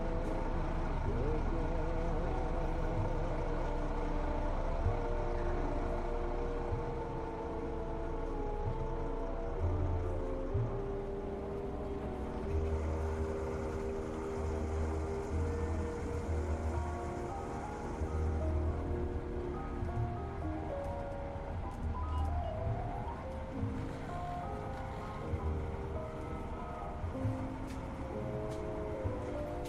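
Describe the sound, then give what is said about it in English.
A car engine hums and rumbles steadily as the vehicle drives along, a constant, fairly loud low drone with faint road noise that persists for the whole stretch. “And I start the car. Just drive anywhere. Okay, you're in the car driving.”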